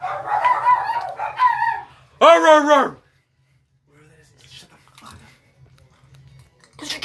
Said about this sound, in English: Don't mind my dogs.